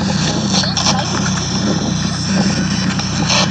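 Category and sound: nature, wind blowing outdoors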